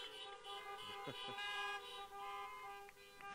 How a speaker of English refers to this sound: Now's your turn. Give them a round of honks, please.